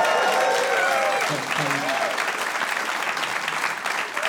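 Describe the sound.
A crowd breaks into loud, sustained applause after a performer recites the biblical genealogy of Jesus, ending with Joseph and Mary. The dense wash of clapping holds steady for several seconds, with a few voices and cheers mixed in near the start.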